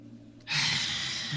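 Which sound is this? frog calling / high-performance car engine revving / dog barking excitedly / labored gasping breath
labored gasping breath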